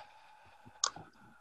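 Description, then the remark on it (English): A single sharp click of a mute button being pressed stands out against a faint steady hum, followed by a softer second tap a moment later. “I'm clicking the mute, and it will not mute her.”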